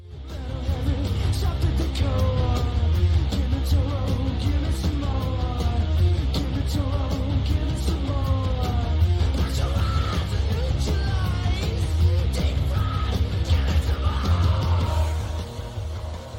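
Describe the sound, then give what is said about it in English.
A steady, loud low rumble of a car starting up runs under a radio being tuned by hand, with swooping whistles and brief fragments of stations and voices flicking past before it settles on the station KLON, Clone Radio. “So this was a total surprise the first time I heard it, with the tracks starting off with that weird car starting up and the guy flicking through the radio dials until it settles on KLON, Clone Radio.”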